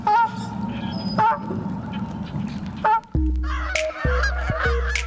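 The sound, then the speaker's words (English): Canada geese honk loudly and repeatedly, a flock calling with harsh overlapping honks, growing busier and more layered toward the end, with no talking. “Page 31, Canada Goose.”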